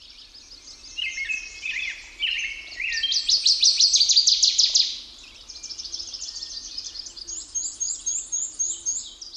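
birds singing

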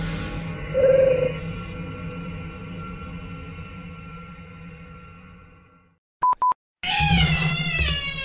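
cat meowing

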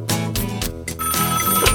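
telephone ringing

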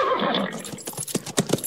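horse neighing

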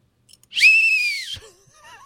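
whistle being blown

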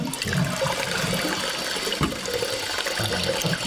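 toilet flushing

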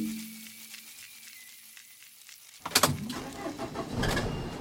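car engine running

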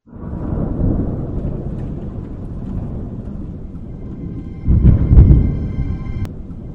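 thunderstorm thunder

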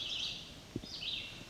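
red-eyed vireo singing

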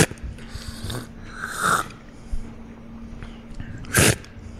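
slurping hot tea

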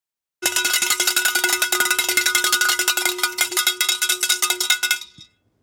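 lunch bell ringing

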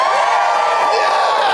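crowd cheering

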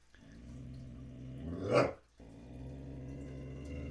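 dog growling

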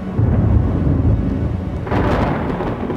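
thunder rumbling

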